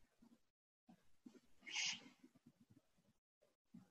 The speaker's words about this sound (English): I have this very loud purring kitten sitting there.